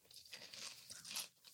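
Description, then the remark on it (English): Crisp crunching of thin, coated, not salty chips being bitten and chewed, a quick series of brittle cracks with no talking, loudest toward the end. “Good crunch, good flavor. Nice and thin. I like the density. Gives you a great crunch.”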